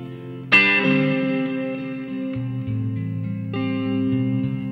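Electric guitar chords strummed through a guitar amp and left ringing in a wash of plate reverb, with a few slow changes under a long shimmering sustain. No voices.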